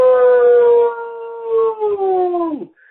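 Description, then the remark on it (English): A single long, loud howl from a trucker in a small town in Alberta, Canada, imitating a wolf, holding a steady pitch for over two seconds before sliding down and breaking off. “Small town, Han, Alberta, and I got a howl for you straight from Canada.”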